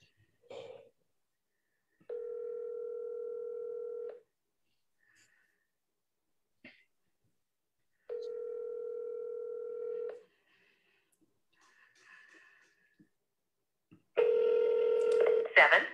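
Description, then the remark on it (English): A phone line ringing back: two long steady electronic ring tones about two seconds each, separated by silence, followed by a louder burst of busier tones at the end, with faint breathing between. “I really want this person to pick up.”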